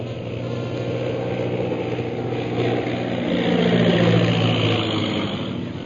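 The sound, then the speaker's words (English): A single low-flying airplane comes straight toward the onlookers, its engine droning steadily, a loud rumbling hum with a buzzing, layered tone that swells slightly toward the end. No voices. “Most High Superior, here comes one plane right at us.”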